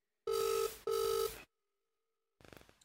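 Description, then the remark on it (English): Two loud electronic phone rings in quick succession on an outgoing call, each a steady buzzing tone about half a second long, followed by a pause of silence and then a brief burst of rustling noise. “Oh, it's ringing.”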